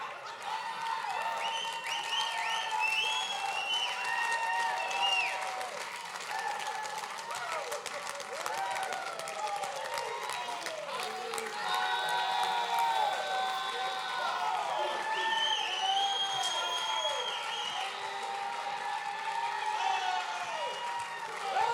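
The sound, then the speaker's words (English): A crowd in Alaska applauds and cheers a preacher's remarks steadily for about twenty seconds, dense clapping mixed with whoops and shouted voices, staying loud throughout with no single speaker. “Only in Alaska could that get you an applause.”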